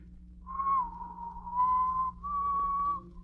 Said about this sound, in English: What's that you're whistling? Oh, I guess you'd never know from the sound of it, but that's the wedding march.